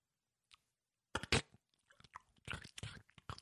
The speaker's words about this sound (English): Dill pickles. Yes! Yes! I knew it was a jar or something. Wow. That was good. That was... That crunch you made, that was on point.